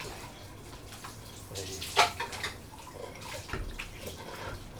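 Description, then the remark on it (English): Water sloshes and splashes in a small pail of dirty water as things are rinsed out into it, with a sharp splash near the middle and softer swishing and trickling around it, moderately quiet. “Yeah, but you rinse all the stuff out into that little pail.”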